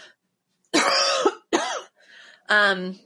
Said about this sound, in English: I swallowed spit weird, but that was bad timing for a cough.